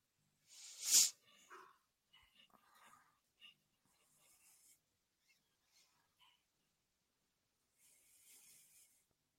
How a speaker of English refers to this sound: Whose dog is that? Who has a dog? Is that my dog? That's mine?